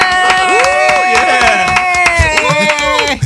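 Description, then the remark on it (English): A loud burst of fake, canned crowd cheering with rising and falling whoops and yells over quick, scattered claps, sustained for about three seconds. “You guys don't have one of those fake applause? Okay, let's do it.”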